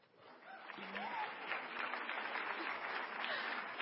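Steady applause from an audience welcoming the closing keynote speaker, a dense continuous patter of many hands clapping that holds at an even, fairly loud level throughout, with a few faint voices mixed in.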